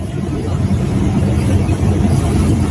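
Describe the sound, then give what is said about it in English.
A convoy of trucks in Port Huron, Michigan, heading toward a blockade at the Ambassador Bridge, rolls by. Their heavy engines make a continuous, loud, low rumble that stays steady throughout, with no voices heard. “It's quite a line of trucks seems to not get any coverage.”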